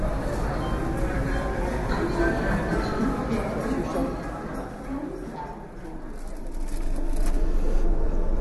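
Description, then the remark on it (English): Ambience of a typical busy Indian train station early in the morning while waiting for a train: a dense, steady wash of crowd chatter and mechanical rumble, with many overlapping voices, some bird calls, and the din swelling louder toward the end. “So here we are, got 3/4 of an hour wait, but just soaking up the atmosphere of a typical busy Indian train station.”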